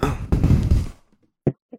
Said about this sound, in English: Especially strange, as no one except his fellow employers know where he lives. And in fact, it's the first time anyone's knocked at the door.